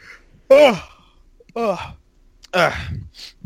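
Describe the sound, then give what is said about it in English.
Three drawn-out, breathy yawns, evenly spaced about a second apart, each starting with a voiced rise and trailing off into an exhale, clear with no talking. “I'm sorry about the yawning, everybody.”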